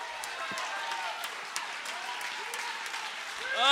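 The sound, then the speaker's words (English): An audience claps their hands in a steady, dense wash of applause, with scattered cheers and voices rising over it and growing louder at the end. “He has broken down that wall. Clap your hands.”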